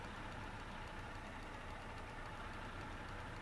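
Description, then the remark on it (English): An automatic car's engine idles steadily at a red turn arrow, with a low, continuous rumble and faint mechanical ticking, heard from inside the vehicle with no talking. “I mean, this is an automatic car.”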